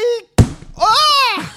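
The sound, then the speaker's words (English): A voice imitates kicking in a steel-plated door: a short vocal note, a brief pause, then one loud, sharp thud, followed by a long, sustained voiced cry that rises and falls. “Okay, I'm going to kick in this. Is this no sound effect for this? No? No? Okay, I will do it myself.”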